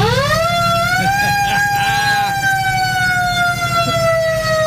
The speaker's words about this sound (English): there's only one last thing to do. We got to hit the siren. Flip that red switch. Right here? Yep. And then you're going to want to hit that foot pedal right there.